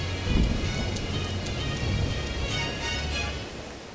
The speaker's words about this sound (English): That storm is closing in quick. It's not safe to stay out in the open much longer.